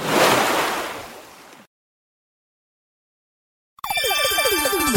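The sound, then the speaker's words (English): A loud splash of water washes in and fades over about a second and a half, followed by silence and then a bright, tinkling musical jingle, for the Prince of Ponds show on Pet Life Radio. “Go ahead, splash me.”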